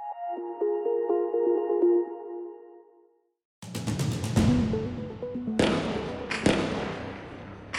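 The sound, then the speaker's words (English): Gunfire during a raid by Israeli forces in the West Bank city of Jenin: after a steady ringing tone and a brief silence, a rapid burst of loud, sharp shots rings out, followed by several scattered single cracks with echoing rumble. “Gunfire in the occupied West Bank city of Jenin as Israeli forces carry out a raid.”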